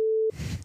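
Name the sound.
censor beep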